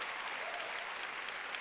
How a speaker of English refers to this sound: Clap your hands if you hear what I'm saying. Come on.